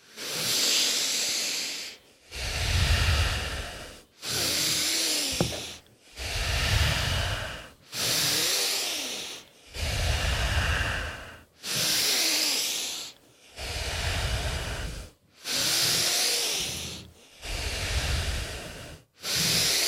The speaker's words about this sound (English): The tingling, the vibration as we breathe in through the nose in 3, 2, 1.